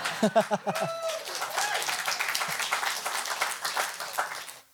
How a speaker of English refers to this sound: Amen. One person clapping is awkward. Y'all should have joined in there, right?